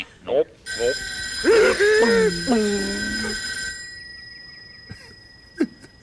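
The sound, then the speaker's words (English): In a Sesame Street clip featuring the two Martians, a telephone bell rings in one sustained, bright metallic burst lasting about three seconds, while warbling voice-like cries rise and fall over it. Then brief faint knocks follow in near quiet. “You're staring at a telephone, by the way.”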